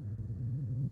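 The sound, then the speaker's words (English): A low, groaning creak from a chair, like weight settling onto a leather couch, holding a wavering pitch for almost a second before stopping abruptly. “Sounds like a really fat person just sat down on a leather couch.”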